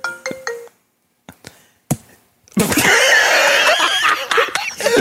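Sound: mobile phone ringtone ringing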